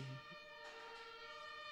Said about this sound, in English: You hear those sirens?